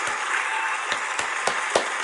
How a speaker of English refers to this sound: I think that some celebration is in order. I should have had this pulled up before, but you know what? Here we go. Let's just have claps for the very last episode of the podcast.